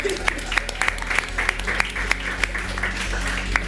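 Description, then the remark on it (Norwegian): An audience applauds the ordinary, non-industry people among them, many hands clapping at once in a dense, even patter with a few sharper claps standing out, sustained for a few seconds at moderate volume. “Hei, applaus for dere.”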